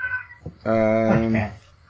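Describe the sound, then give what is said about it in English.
A single drawn-out cat meow, loud, with a rising then falling wail lasting about a second, preceded by faint background noise. “Poor cat.”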